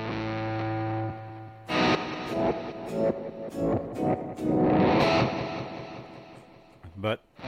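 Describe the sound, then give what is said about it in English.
An electric guitar played through an Electro-Harmonix Micro Synthesizer pedal, giving a synthetic, keyboard-like tone, starting with a sustained chord, then bursts of distorted, buzzy strums and swelling notes that cut off near the end. “that's how I'm getting those weird sounds.”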